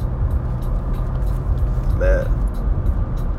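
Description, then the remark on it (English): A new car's engine purrs steadily with a deep rumble throughout, briefly swelling midway as a man's voice cuts in with a short remark. “Uh-oh, y'all hear that engine. Y'all hear it purring up a little bit.”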